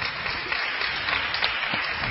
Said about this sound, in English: a big round of applause, ladies and gentlemen.